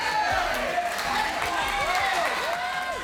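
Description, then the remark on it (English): An excited crowd at a goalball tournament cheers in a steady, dense roar, with overlapping shouts and rising whoops cutting through and scattered clapping underneath, staying loud throughout. “We talked to players, coaches, refs, and captured a lot of audio from this excited crowd.”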